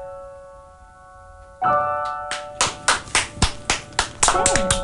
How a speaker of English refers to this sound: Thank you. Bravo! And the crowd goes wild! Bravo, bravo!